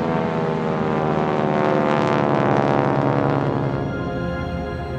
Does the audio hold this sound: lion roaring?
no